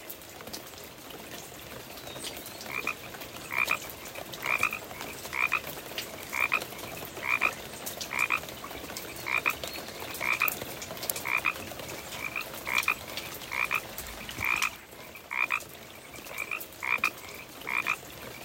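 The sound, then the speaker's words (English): Pacific chorus frogs croak in a steady, repeating series of short two-part calls over a constant hiss of rain falling outside a house, with scattered drips. “I'm going to start off with a little bit of the beautiful sound of the rain that's falling outside my house right now and the Pacific chorus frogs that were serenading my sleep last night.”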